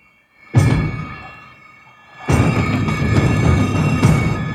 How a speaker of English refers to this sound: These are the drums you just got? Yes. That's quite cool, actually. They sound like those Japanese Kobe drums. And they're going by my clicking.